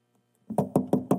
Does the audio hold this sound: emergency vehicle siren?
no